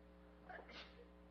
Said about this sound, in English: Bless you.